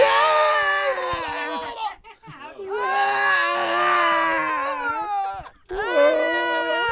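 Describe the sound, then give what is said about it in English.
A voice imitates a person's high-pitched, strained scream while throwing up, with a wet, gurgling retching quality, in two long wailing bursts separated by a brief gasp, loud. “Dude, it was a high-pitched scream, but with a gurgle of vomit in it.”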